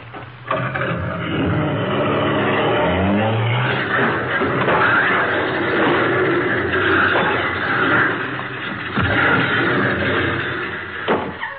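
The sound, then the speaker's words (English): The engine of McGee's car, its accelerator sticking, revs and roars, rising in pitch, then a loud splintering crash of wood and debris as it goes right through the back of the garage, with more clattering impacts near the end. Loud, no voices. “Why, he went right through the back of the garage.”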